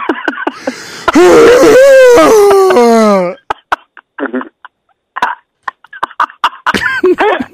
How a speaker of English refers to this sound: That type of yawn is a flagrant yawn. That's, yeah. that's an angry yawn.